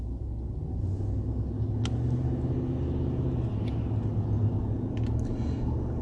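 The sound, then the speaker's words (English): A big dump truck rumbles steadily past, a deep low-frequency engine drone that fills the whole stretch, with a few faint clicks and squeaks on top and no talking. “Big dump truck.”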